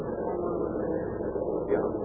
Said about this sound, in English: But you said they'd be marching. First the bombers, dear. They led the way. Oh, Mama, they're beautiful.